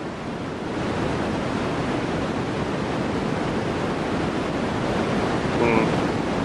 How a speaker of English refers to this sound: We've an example, Brian, as well, of white noise. Here it is.